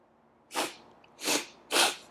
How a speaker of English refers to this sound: Hey, man. This sneeze is weird.